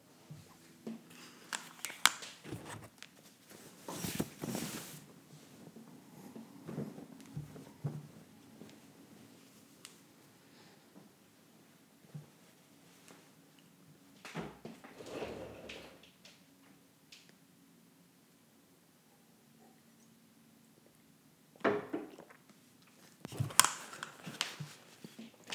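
Bursts of soft fabric rustling as a shirt is pulled off in a house, with a few sharper swishes and rubs separated by quiet pauses. No one speaks.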